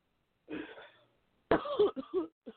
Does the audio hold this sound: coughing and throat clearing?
yes